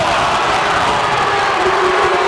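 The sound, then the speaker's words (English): A live audience boos in a sustained, dense roar of many voices, loud and steady throughout with no pauses, the crowd noise blending into one continuous jeering swell. “Are they cheering? They're booing.”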